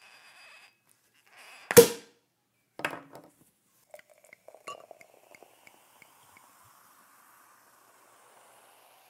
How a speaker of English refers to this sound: So, without further ado, let's crack open some bubbles and get into the topic.